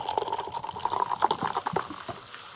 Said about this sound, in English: It has like this kiwi and almost like candied lime smell to it. And you know what? I'm actually going to pour it in the glass.